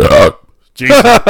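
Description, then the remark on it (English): A short, loud, voiced burp, then a brief pause before a person starts talking. “those are my metal vocals, also known as a burp.”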